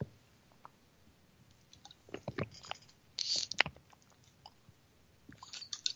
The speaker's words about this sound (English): So take a drink of water.